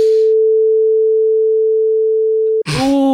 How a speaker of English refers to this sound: I would just bleep over, just bleep over the punchline, like, and then audience, you can imagine like, what that joke was.